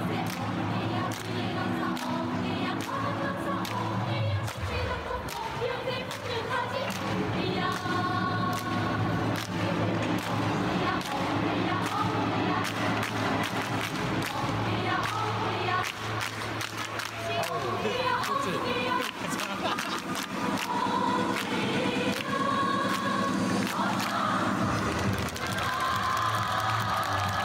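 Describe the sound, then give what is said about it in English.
The North Korean cheerleading squad, in red uniforms, chants together in unison in South Korea, backed by steady rhythmic clapping, loud and continuous throughout with a busy crowd atmosphere. “And the media love the North Korean cheerleading squad.”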